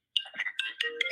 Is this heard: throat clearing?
no